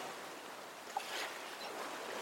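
A steady, hissing wash of ocean surf, with waves rolling gently onto the shore and a soft swell partway through. The sound is moderately quiet and continuous, with no voices.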